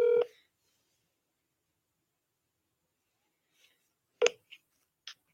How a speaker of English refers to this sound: So I'm going to try to call Jody and set his phone right here by the mic.